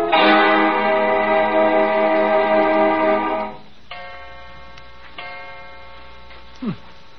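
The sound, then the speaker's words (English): A clock strikes two o'clock: two loud, ringing metallic chimes, the first sustaining for several seconds before the second rings out and slowly fades, with a few soft clicks. “2 o'clock.”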